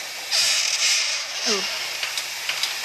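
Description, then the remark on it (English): A voice imitates a huge solid steel door creaking open, a drawn-out, wavering groan with gliding pitch over a steady breathy hiss, moderately loud. “That's what the door would sound like.”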